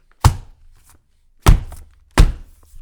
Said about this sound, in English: Okay, who knew that I'd be slamming books again at a Reader's Digest?